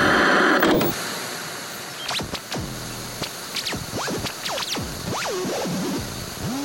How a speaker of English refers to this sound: A new radio station will emerge from this static.